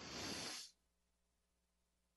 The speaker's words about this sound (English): So together, let's take a couple of nice deep breaths, breathing in through the nose.